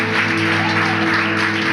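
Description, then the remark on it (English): A steady wash of audience applause, many hands clapping together in a dense, continuous roar that stays loud and even throughout, with no voices standing out. “You guys could just keep applauding.”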